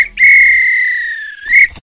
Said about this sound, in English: If this were a real bit of extra time, this is when the ref would blow the whistle, because it's finished.